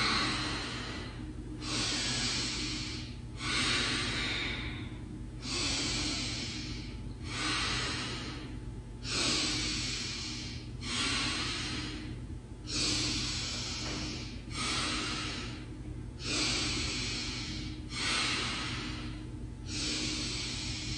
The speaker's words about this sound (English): This is good to clear out any kind of congestive air or old air or stale air in your chest and lungs as well. So here we go. Breathing in first and exhaling out.